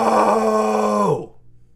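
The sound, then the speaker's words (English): A person, with the mic moved away, imitates another man's scream of "No!": a single loud, drawn-out, strained cry lasting about a second, held steady before its pitch drops and it cuts off into quiet. “he takes a whole lot of heavy breathing before screaming, and I'm going to move my mic away before I scream here to replicate what he did, but he starts heavy breathing, and then he gets on and goes, "No!"”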